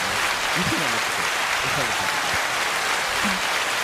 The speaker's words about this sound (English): All right, so, ladies, can I get some applause for the ladies? Because I ain't going to lie. Y'all didn't show up. They definitely showed up. No, hold that a little bit more. They deserve a little bit more.